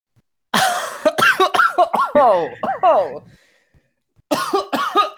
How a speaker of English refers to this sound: We're just gonna keep the coughs. That's perfect.